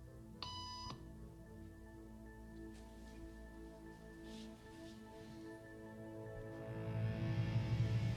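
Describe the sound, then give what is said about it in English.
A single short electronic beep used as a signal tone in a hidden camera experiment, a bright harmonic-rich tone lasting about half a second, sounds near the start over a low steady hum and soft background noise that swells toward the end. “After just 3 beeps, and without knowing why she's doing it, this woman is now conforming perfectly to the group.”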